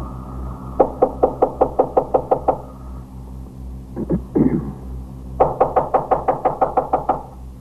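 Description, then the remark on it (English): Police officers knock on a fourth-floor rear apartment door in two bursts of firm, rapid knocking, each about a dozen sharp raps in quick rhythm, separated by a brief pause with a couple of muffled thumps, loud over a low hum. “Who is it, Lois? We're police officers. Open up.”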